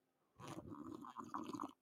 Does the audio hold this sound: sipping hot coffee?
yes